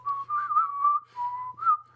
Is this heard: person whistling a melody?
yes